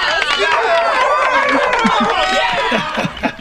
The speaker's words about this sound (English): Whole sled dog team there applauding you.